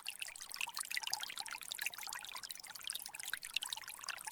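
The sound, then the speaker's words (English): A fast-moving river with brown-green water and fallen leaves floating on its surface flows steadily, a dense, hissing rush with constant bubbling and splashing, continuous without any voices. “Fallen leaves float on the surface, dancing on the currents of the fast-moving water.”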